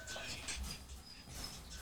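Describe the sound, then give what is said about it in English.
Soft, scratchy shuffling and light pattering of a dog's paws moving over a table surface, quiet, with a faint murmur of voices in the background. “Your dog good in sports, but dumb as hell.”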